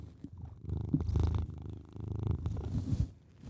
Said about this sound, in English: He was rubbing against the mic every time he was purring.